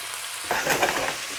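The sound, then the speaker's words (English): Pasta frying in a pan: a steady crackling sizzle that swells suddenly halfway through, with bright hissing spatter and soft stirring scrapes, and no voices. “Fry up that pasta, mate.”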